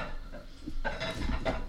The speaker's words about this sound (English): What you doing over there, man? Pushing the broken pieces underneath the table.